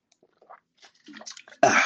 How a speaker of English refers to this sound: Let's drink a little water. Drop my top.